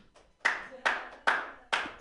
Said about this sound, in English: Who wants by round of applause, vampire apocalypse. Okay, by round of applause, all of the stuff that actually happened.